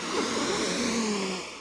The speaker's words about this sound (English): Now, the next thing is to add in the breath. As I sweep the arms out, I sniff in the air.